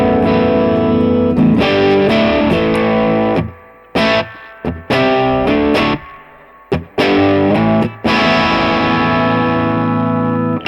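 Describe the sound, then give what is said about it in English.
An overdriven electric guitar played loud and crunchy through a guitar amp with the volume pushed up, with sustained distorted chords broken by short pauses and choppy strummed bursts, no voices over it. “If you push it, it kind of cranks up.”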